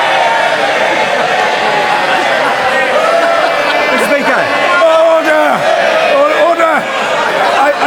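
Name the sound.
parliament members cheering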